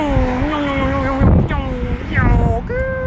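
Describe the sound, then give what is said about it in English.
Several cars turning off a highway speed past in quick succession down the street a pedestrian is walking along, their high engine whine rising and dropping as each goes by, over a steady, loud rumble of street traffic. “Like, I'm looking, and the multitude of cars that are turning off of the highway and down this specific street that I'm walking like on the left side of is insane.”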